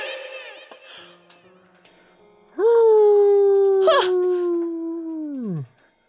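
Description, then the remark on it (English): A wolf inside a castle whimpers in soft, broken whines, then lets out a single loud, sustained howl that holds a steady pitch for about three seconds before sliding down and fading out. “Oh, a wolf followed me in here.”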